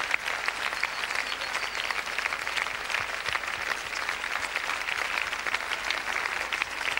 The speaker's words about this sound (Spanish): ¿Cuánto dan la mejor ofrenda de aplausos al Señor?